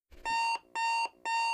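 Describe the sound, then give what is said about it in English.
An alarm clock goes off at 9 o'clock a.m. on a Wednesday, beeping in three loud, evenly spaced electronic bursts, each a steady high tone with bright harmonics, separated by short pauses. No one speaks. “Your alarm goes off.”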